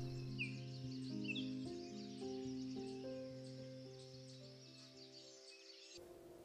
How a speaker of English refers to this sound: It's a moment to pause and enjoy the morning birds, a chance to let my thoughts wander, and slowly wake up from my sleep.